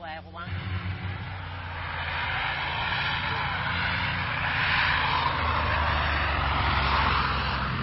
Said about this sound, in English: The missionary planes began flying in frequently, bringing help and materials to the growing church.